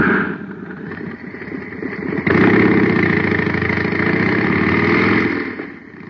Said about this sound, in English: Now listen to the same jet cycle filled with super fuel.